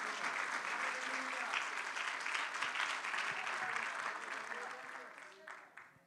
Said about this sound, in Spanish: Denle un fuerte aplauso al Señor.